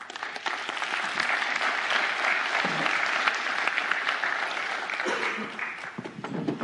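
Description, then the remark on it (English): Sustained applause from an audience welcoming the speaker's friend invited up front, a dense steady patter of many hands clapping at a constant loud level for several seconds, with faint voices mixed in. “So you're going to give Jimmy a round of applause real quick.”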